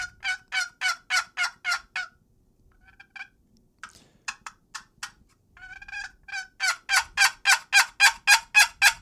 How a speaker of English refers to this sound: So that would be kind of, I guess, an example of some of the sounds that you get on a box call.